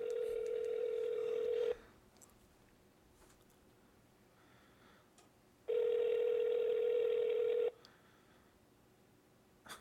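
A phone call rings out through the earpiece: two long, steady ringback tones about four seconds apart, with quiet in between and nobody picking up.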